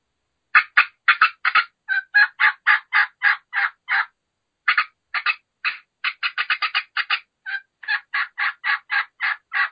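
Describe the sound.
Sharp, rapid turkey hen cutting made by a caller imitating an aggravated hen that has run into another hen: irregular bursts of clucks that run into a steady series of loud, excited yelps, clear with no talking.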